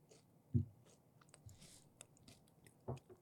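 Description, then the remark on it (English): A crisp crunch as food is bitten, followed by steady chewing with small crackling bursts and a second louder crunch near the end. No talking. “Oh, and that was a good crunch bite.”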